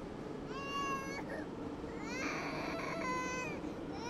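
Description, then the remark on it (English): A toddler cries in two long, high wailing bursts with a short break between, loud over a steady low background rumble, on a subway train as the mother wipes the toddler's nose. “Across the aisle, a mom wipes snot from her toddler's nose. Watching someone cry in public can be uncomfortable, but it's the perfect invitation to share your own pain.”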